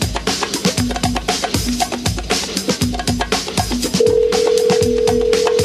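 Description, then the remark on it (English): A thumping, rhythmic music bed with short repeated electronic tones, then a steady outgoing phone-call ringing tone comes in and holds for the last couple of seconds as an interview guest is called. No one speaks. “All right, let's see if we get him on the phone.”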